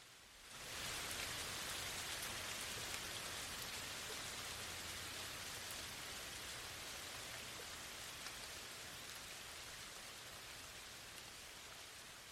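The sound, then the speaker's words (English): Steady rain falls from storm clouds across scorched land, a dense hiss of countless drops striking surfaces, holding an even, fairly loud level from start to finish with no voices or other sounds. “The storm clouds, once home to that unholy inferno, sighed with the relief of the dying and spilled their precious rain across the land, scorched and glowing, now quenched.”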